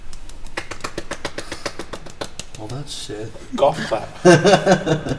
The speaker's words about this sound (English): Well, that shit. Golf clap.